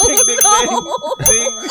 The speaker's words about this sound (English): The dinging echoes throughout the room and it will never stop. Ding, ding, ding, ding.